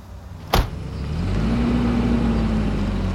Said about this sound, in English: Dare drive away in that fucking car. Get back here right now or I swear you'll never